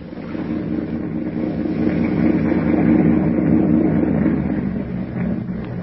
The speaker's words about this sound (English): Suddenly, the thick silence is broken by the low purr of a motorboat engine.